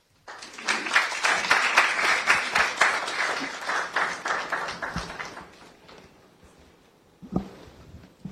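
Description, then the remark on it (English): An audience at the NSMQ quiz event bursts into uneven, scattered applause after a speech. The claps are loud and irregular at first, then thin out and fade, followed by a brief lone clap near the end. “You see, this kind of epileptic applause, me, I don't like.”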